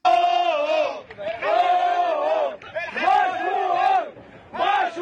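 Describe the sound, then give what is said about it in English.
Tugboat crew members cheering and shouting in sustained, loud bursts of voiced yells after dislodging the ship Ever Given from the Suez Canal, with brief pauses between four or five rising and falling whoops of celebration. “Those are the joyous sounds of the tugboat bros who successfully dislodged the Ever Given, the ship, from the Suez Canal.”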